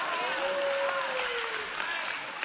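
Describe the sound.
A church audience claps during a sermon in a steady, moderately loud wash of applause, with a sustained voice-like tone sliding gently downward over it before fading.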